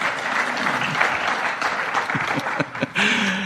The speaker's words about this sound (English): A deserved round of applause, please. Back you go, guys, to your seats. Aren't they been very good sports? Can we please thank them? Well done.